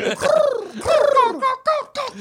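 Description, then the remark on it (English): A person's voice mimics a bird call with a few fairly loud cooing whistles that glide down in pitch, repeated in quick bursts with short gaps between them. “Pears, and also calling birds, and also being like, That's the noise they make.”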